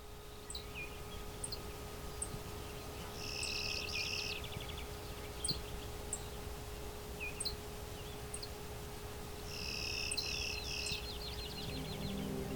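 A clay-colored sparrow gives its flat, insect-like buzzy song twice, each a short series of raspy buzzes, with faint high chirps of other birds and a low steady hum in the background.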